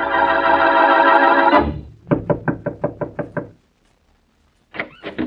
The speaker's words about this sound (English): With him, as he knocks on Mary Wesley's door, is the dead man's sister.